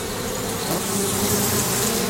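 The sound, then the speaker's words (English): A dense, steady whine of mosquitoes buzzing in a swamp, continuous and unbroken for the full two seconds, fairly loud, with no voices. “I can't slap the mosquitoes with my hands tied behind my back.”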